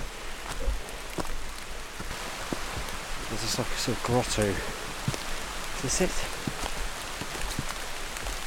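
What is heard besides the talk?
rain falling on surfaces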